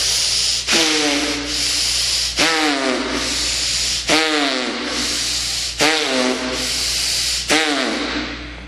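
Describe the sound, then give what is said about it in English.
Loud, noisy belly breathing in a steady rhythm, with harsh rasping breaths roughly every second and a half, some carrying a throaty, voiced edge: long, fast breaths from the belly as part of a guided breathing exercise. No one speaks. “Long and the fast breath, the noisy breath from the belly.”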